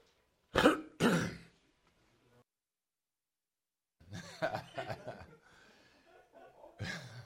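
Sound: throat clearing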